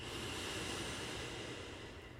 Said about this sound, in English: We'll do this together. Exhale all your air. Inhale fully, breathing in.